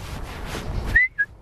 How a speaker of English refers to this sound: Do you know what the whistle interval is? Interval? Yeah. Between what and what? The two notes there. What? It's a third.